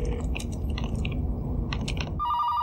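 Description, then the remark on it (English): Crackling, crunchy rustling fills the first two seconds, then a telephone starts ringing near the end with a steady electronic tone, clear. No one speaks. “He's using the hotel phone.”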